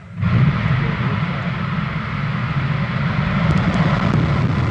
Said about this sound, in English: The sound of a Falcon 9 rocket carrying the new Dragon capsule into space. This could also be the sound of America's future in space, with private companies like SpaceX ferrying cargo and crew into Earth orbit.